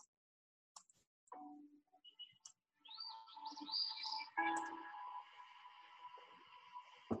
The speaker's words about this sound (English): Birds are part of our lives. They fill the air with song, inspire us with their beauty, and make their homes in the most unexpected places.